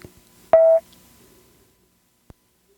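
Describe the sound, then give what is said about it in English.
A single phone button press during a trivia quiz game: a sharp click with a short, bright electronic tone lasting a quarter second, then a lone soft click a couple of seconds later. No one speaks. “Phone. Button.”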